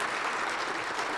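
A steady wash of audience applause as people answer whether they have a workplace best friend, many hands clapping at once in a dense, even patter that holds at a constant moderate loudness throughout.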